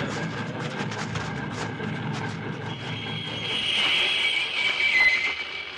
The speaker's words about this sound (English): Stop that locomotive.